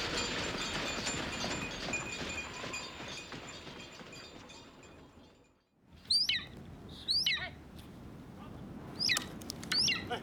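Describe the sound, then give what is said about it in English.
A golden eagle named White Wing, a five-year-old trained hunting eagle in the Altai Mountains of northwestern China, gives several sharp, high-pitched yelping cries in short bursts, following a stretch of steady rushing background noise; the calls are clear, with no talking. “Captured and trained 4 years ago, White Wing, this five-year-old golden eagle, is an integral part of the family”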